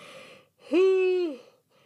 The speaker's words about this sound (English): Fuck. I always yawn when I cast.